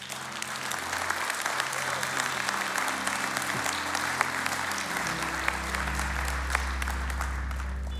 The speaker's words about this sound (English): I love the heart of this church that would just clap in that moment.